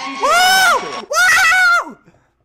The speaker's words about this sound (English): The scream so loud, Joe Rogan appeared.